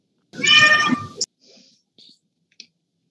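A loud, drawn-out meow, probably a human voice imitating a cat, lasts about a second. It is followed by a few faint, brief clicks and soft noises, then silence.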